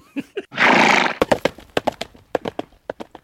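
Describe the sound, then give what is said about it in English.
A horse gives a loud, breathy whinny, then its hooves clip-clop in a quick, steady rhythm of sharp knocks on a hard surface, with no voices. “Hey, I got a new horse.”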